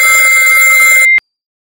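A loud, shrill telephone ring sounds continuously for about a second, a dense metallic jangle with a piercing high tone, then cuts off abruptly into silence.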